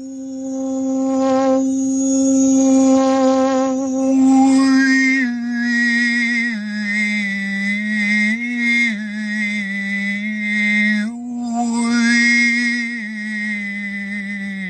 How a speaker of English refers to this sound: I'll bring in a low tone, which is, better for the technology. And the low tones can be very grounding.